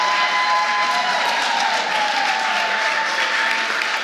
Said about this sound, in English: I love this. I just get an applause for walking onto the stage.